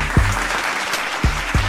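An audience applauds in a dense, steady wash of clapping that fills the whole moment, punctuated by a few heavier, deeper thumps. No one speaks over it.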